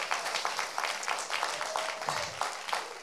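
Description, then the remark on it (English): Steady applause from a crowd thanking the teams involved in Easter and Hero, many hands clapping in a dense, continuous patter at moderate loudness, with a faint voice briefly audible underneath. “So can we give a round of applause for everybody and anybody who was involved?”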